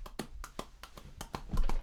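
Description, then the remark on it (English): Hands tap out a steady clip-clop rhythm imitating a horse's hooves, about seven sharp, moderately loud knocks in quick succession, some with a duller low thump, and no voices. “Clip, clop, clip, clop, clip, clop.”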